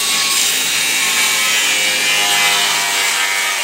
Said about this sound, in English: He keeps a grinder in his truck for cutting metal.